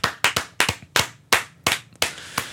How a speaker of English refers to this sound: We've all been waiting for this moment. Whole set starts clapping. Yeah, like slowly, just oh.